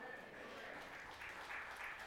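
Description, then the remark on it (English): Light, scattered applause from a modest crowd, a steady patter of claps at moderate volume that holds evenly for a couple of seconds without building. “I think you guys could do better than that, right? Come on now.”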